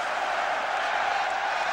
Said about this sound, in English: Good applause for the losers from Luton Town, who on the day couldn't find the style that they'd shown previously in the competition.